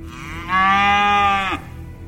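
A single loud, drawn-out cow moo lasting about a second, steady, then cutting off abruptly into a quiet background hum.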